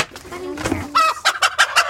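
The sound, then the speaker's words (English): Chickens cluck loudly, a rising squawk followed by a quick run of four sharp, rhythmic clucks with bursts of agitated cackling, while eggs are being gathered at their coop. “Y'all are so loud!”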